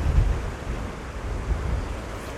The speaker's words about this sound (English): Oh, nasty breeze.